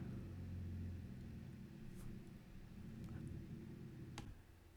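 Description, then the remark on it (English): A car with a loud, broken exhaust starts and rumbles steadily at low pitch, sounding muffled, with a few faint clicks over the drone and no voices. “Some bullshit fucking car that needs an exhaust decided to start.”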